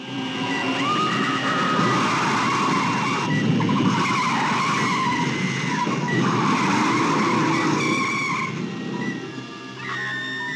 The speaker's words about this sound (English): the screech of the brakes and Nancy's scream kind of bleed together in that scene